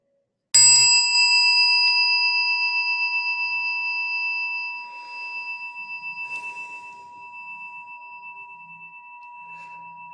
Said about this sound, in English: Allowing the sound of the chime to call you back.